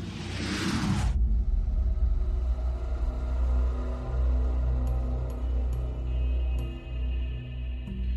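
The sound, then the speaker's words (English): A car rushes past with a loud, brief whoosh, then a steady low engine rumble and hum carries on, with a few faint clicks toward the end. No one speaks. “I think I just heard a car.”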